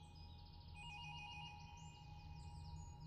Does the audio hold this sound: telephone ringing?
yes